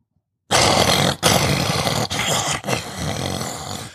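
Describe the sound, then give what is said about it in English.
A man's voice imitates a lion's roar, loud, a sustained growling bellow broken by a few short breaths over about three and a half seconds. “Give your lion voice.”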